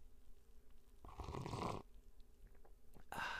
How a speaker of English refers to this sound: I kind of exaggerated the sipping sound so you could hear it, but it's still delicious.